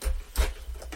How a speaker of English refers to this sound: Sorry, that's the noise of my pencil tin.